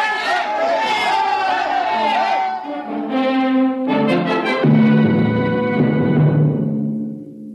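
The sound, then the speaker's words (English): An angry crowd shouts and yells together in a loud surge of overlapping voices as it chases two people down a long steel corridor, swelling and rising in pitch as it presses on, without letup for several seconds. “Riker and Aylin ran down the long steel corridor with the crowd on their heels.”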